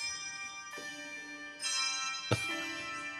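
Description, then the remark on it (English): Bells ring out in a few distinct strikes, each one layering a bright, shimmering tone over the lingering ring of the last, moderately loud with no voices. “Aren't those bells?”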